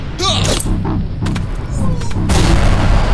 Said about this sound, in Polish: Rzut był celny. Eksplozja spowodowała niezły zamęt w szeregach wroga.